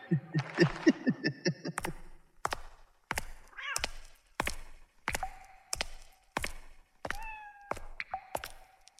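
A cat meows at the start, then a steady series of sharp knocking thuds follows, with a couple of short, high cat chirps slipping in between the knocks.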